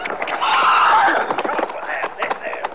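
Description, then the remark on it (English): A horse that has gone down hard gives a loud whinny that wavers and fades, followed by several uneven hoof thuds and shuffling steps as it is coaxed to stand, with muffled voices in the background. “How about the horse, Chester?”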